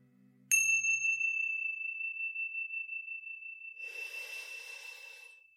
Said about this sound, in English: And when you hear the sounds of the chime, coming back into this space.